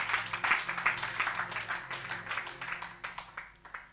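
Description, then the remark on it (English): An audience claps their hands for Father Abraham during a sermon, a dense, steady patter of many hands that gradually thins out and tapers off near the end, with no one speaking over it. “Clap your hands for Father Abraham.”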